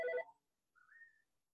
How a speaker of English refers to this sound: I'm very aware my phone is ringing in the background. It's okay. I apologize.